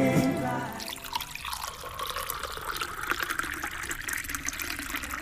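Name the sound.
liquid being poured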